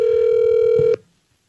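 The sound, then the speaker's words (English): A phone call being dialed: one loud, steady electronic telephone tone at a mid pitch holds for about a second, then cuts off abruptly into quiet. No one speaks. “Well, let's call her right now.”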